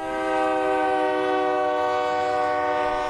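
A train climbing steadily through a mountain valley blows a long, steady horn blast that holds loud and unbroken for about three seconds over a low rumble of rolling cars, with no one speaking.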